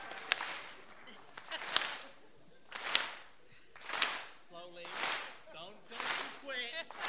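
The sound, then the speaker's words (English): A slow Viking thunder clap at the 2019 Golden Blazer award presentation for Megan Rapinoe, in the style of the Icelandic national team's fans: a crowd claps in unison, about six loud, broad booming claps spaced roughly a second apart, with a voice speaking between them. “Please move slowly towards the Viking clap.”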